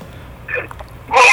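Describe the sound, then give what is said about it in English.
A single loud sneeze bursts out at the end, preceded by a quick, breathy intake of air, with no talking. “Excuse me, I'm sorry, I'm sneezing.”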